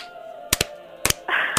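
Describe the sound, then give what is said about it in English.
Slow hand clapping: a few sharp claps landing in loose pairs about half a second apart, with a steady hiss rising in the background toward the end. “That's a slow clap, babe.”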